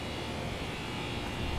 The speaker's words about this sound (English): So I'm going to take you through the steps of how to remove this background noise from the air conditioning unit. Yep, you can hear that there.